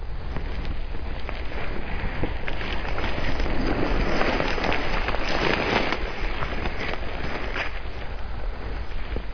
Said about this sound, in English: So that shuffling sound you hear right there, well, that's me scooting my rear end around, because this turkey circled us and came in behind us